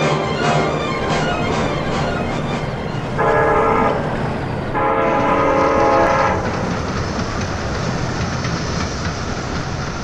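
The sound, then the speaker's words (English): A train rumbles and clatters loudly along the tracks, sounding two long horn blasts midway as it pulls in and stops, the heavy rolling noise continuing steadily afterward with no voices. “Hey, the train's stopping.”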